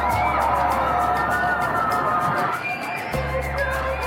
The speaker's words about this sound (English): That's people in Shanghai screaming and yelling from inside their lockdown apartments.